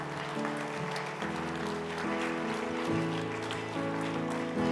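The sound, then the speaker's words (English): A church audience gives a hand clap for the Lord Jesus Christ, applauding steadily for several seconds, a dense wash of clapping blended with sustained organ-like chords that shift every second or so, loud throughout. “Let's give the Lord Jesus Christ a hand clap today.”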